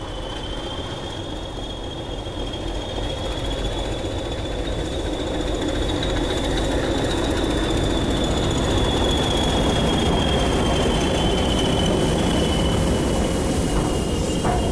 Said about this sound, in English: Anyway, the token's now being given to the diesel locomotive as the line down to Alresford is now clear. I would expect the diesel locomotive along with Cheltenham to be setting off any minute now.